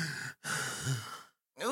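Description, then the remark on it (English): A voice imitates heavy, exasperated breathing: two long, loud breathy exhalations, separated by a short pause, with a brief voiced sound at the end. “Again, the heavy breathing.”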